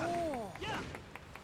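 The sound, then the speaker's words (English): A single person clapping in a quick, steady rhythm, about six claps, fairly light, with a brief rising-and-falling vocal sound at the start. “Logothor claps.”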